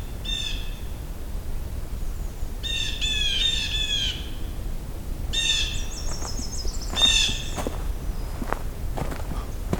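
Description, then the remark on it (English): A blue jay gives several loud, harsh squawking calls in short bursts, with rustling footsteps and low outdoor noise underneath. “It's a blue jay.”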